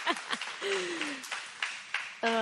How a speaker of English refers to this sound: Ooh, you got a clap.